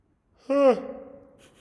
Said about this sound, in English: We'll edit that out. We'll just leave that right there. Yeah, I'll leave that. What if that was the intro bit, like my yawn?